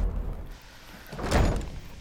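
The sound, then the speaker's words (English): A front door opens and shuts with a single broad whoosh and thud in the middle, moderately loud, with low rumbling before it and no voices. “Back out the front door.”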